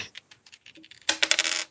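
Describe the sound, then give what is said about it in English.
A new small die clatters across a hard surface: a few light, scattered clicks, then a louder burst of rapid bright rattling as it tumbles and settles. No voices are heard. “I just got a new die.”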